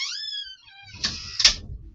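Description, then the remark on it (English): A cat gives a drawn-out meow, then a door is pushed shut with a rattling thud and a sharper bang as it closes. No one speaks. “Shut the door, go ahead and shut the door.”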